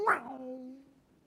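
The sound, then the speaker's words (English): A voice imitates a Kawasaki motorcycle shifting through all three gears, starting with a sharp revving burst and settling into a steady, buzzing engine drone that fades out after about a second. It is fairly quiet. “That was a Kawasaki catching all 3 gears.”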